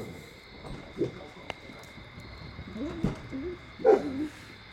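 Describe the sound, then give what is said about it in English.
Dogs bark in a few scattered bursts as someone comes through, with the loudest cluster near the end, set against a steady background hum and some faint murmuring. “Oh, dogs are going to go crazy.”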